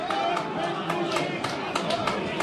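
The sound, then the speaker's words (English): A restless football crowd at Wigan Oval murmurs steadily during a match, a dense wash of many voices with brief sharper bursts of shouting or clapping rising out of the noise every half second or so. “Crowd getting a bit restless here at Wigan Oval.”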